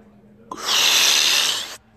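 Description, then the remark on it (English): A single big inhale through the mouth, a demonstration of filling the diaphragm like a balloon, a loud, steady, hissy rush of air lasting just over a second, starting abruptly and cutting off sharply, with no talking. “There's a big inhale in the mouth, but yep, it actually kind of sounds like a balloon.”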